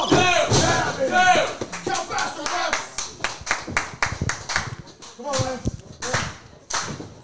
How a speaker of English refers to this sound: And the fans are cheering on Santos and Jane right now. They're not cheering for Bad Company. Lance and Bale, they're chanting for Bad Company.